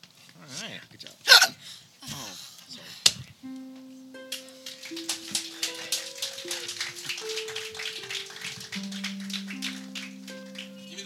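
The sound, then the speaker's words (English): A few sharp, abrupt hiccups sound in the first seconds, fairly loud. They give way to a stretch of voices over steady, sustained electronic tones. “Maybe the hiccups should stop you.”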